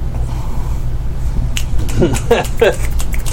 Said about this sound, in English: The cafe erupts in finger snaps. And, yeah, the crowd goes mild.